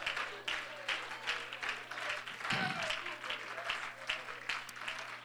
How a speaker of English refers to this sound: Give the Lord a real good hand clap of praise. Come on. God's been good to you.